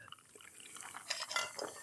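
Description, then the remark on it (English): Soft, crackling fizz of soda poured over ice, a hissy carbonated sizzle that swells in a few brighter bursts before settling, with no voices over it. “Oh, and it's going right on ice, you guys. That sizzled.”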